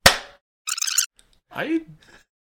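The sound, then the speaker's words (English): One sharp, loud hand clap, made on a count of three, rings out at the start and decays quickly, followed by short bursts of voices and a rising vocal sound. “Wait, I thought we were clapping on 3.”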